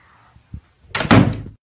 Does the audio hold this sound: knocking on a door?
yes